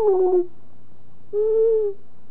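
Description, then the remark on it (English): Two drawn-out owl hoots, the first slightly falling and the second steadier and longer, separated by a pause of about a second, heard clearly against a quiet background with no talking. “Now, the owl sound that most people hear is woo. You hear this woo. That's an owl sound.”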